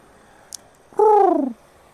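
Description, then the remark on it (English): A single pigeon coo, a soft throaty call that slides downward over about half a second against a quiet background, preceded by a faint brief click. “Not a giant pigeon.”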